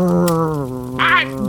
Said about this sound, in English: Dang it, Clay, call off your cur dog. Easy there, boy.